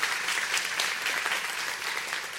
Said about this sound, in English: Yeah, because you can go ahead and clap if you want. That's a good statement.